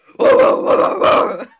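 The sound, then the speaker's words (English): A woman mimics a deep, gravelly dog bark: one drawn-out, growling vocal burst lasting over a second, rising and falling in three loud swells, with no other sounds. “She sounds like a fucking junkyard dog banged a grizzly bear and that's its pup.”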